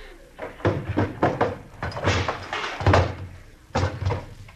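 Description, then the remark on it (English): A washstand is shoved and scraped across a floor in several loud bursts, with wooden knocks and thuds as it bumps against a door, being put back against the door. “The washstand.”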